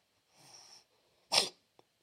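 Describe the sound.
A person imitates the snore of someone who wakes themselves up by snoring: a soft, drawn-out breathy rasp, then one abrupt loud snort, followed by a faint click and silence.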